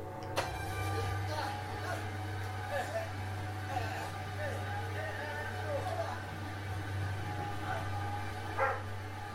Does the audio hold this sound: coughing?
no